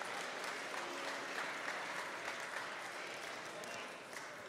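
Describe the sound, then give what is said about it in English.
An audience claps their hands unto the Lord in sustained, dense applause, a steady wash of many overlapping claps that holds at an even level throughout without pausing. “One more time, let's clap our hands unto the Lord, and you may be seated in Jesus' name.”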